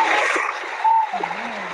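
A burst of canned applause from a sound-effect button: a dense, steady crackle of many hands clapping, with a short whistle-like tone partway through, and no one talking.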